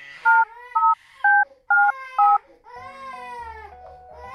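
Five short telephone keypad tones beep at an even, steady pace as someone dials Cuddle Pod technical support, each a clear two-note chirp, while an infant wails continuously underneath and the crying swells once the dialing stops.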